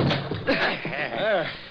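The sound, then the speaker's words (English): A locked door, with smoke coming from under it, is forced open by several men pushing together, with heavy thuds and a slam, while the men's voices strain and call out. “We'll have to force the door.”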